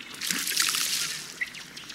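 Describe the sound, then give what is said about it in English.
A male duck, bright rufous red with a black and white head and sky blue bill, runs across the water with rapidly beating wings after his bubbling display, his feet pattering in a steady, splashy run, a continuous fizzing slap of small splashes with no voices. “After the bubbling display, the male will usually run across the water with rapidly beating wings, his feet putt-putting like a little motorboat.”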